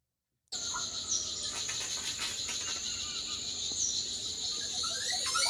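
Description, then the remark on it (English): A bird call plays back from a video through a speaker: a sustained, piercing high whistle holding steady for several seconds, sprinkled with brief chirps and clicks. No one talks over it. “Oh, birds. Listen to this one.”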